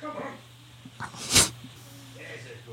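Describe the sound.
A dog, just back indoors from the wet, rainy outdoors, gives one sharp, breathy snort-sneeze, a short hissing burst in the middle of a low steady hum, with faint voices before and after.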